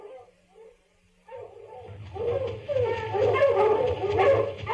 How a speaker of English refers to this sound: The dogs, Pa! They're towards the swamp, Jody.